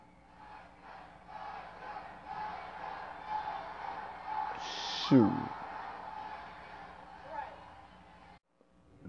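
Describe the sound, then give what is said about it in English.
A large arena crowd loudly chants the name of the wrestler Asuka in a steady, rhythmic roar of many voices, swelling near the middle before cutting off abruptly at the end. “If that wasn't audible enough for y'all, that was the crowd screaming Asuka.”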